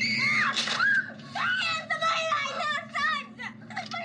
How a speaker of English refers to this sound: And then he bumps into …. They both scream.